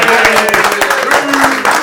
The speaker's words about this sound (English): So a round of applause for John.